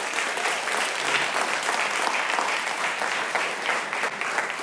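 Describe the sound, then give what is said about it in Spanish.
An audience at a sermon gives itself sustained applause at the preacher's request, a dense, steady patter of many hands clapping at even loudness throughout, with no voices standing out above it. “Dese un aplauso a usted porque usted está levantado.”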